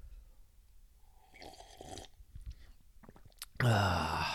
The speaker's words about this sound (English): So let me go ahead and take a sip of coffee, and I will get started.